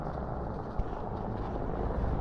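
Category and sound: vehicle, car driving past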